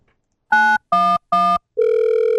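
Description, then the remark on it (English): A telephone sound effect: three quick, evenly spaced electronic beeps like keys being dialed, followed by a steady, continuous dial tone, loud with no voices. “But they called 911, but they didn't ask for an ambulance.”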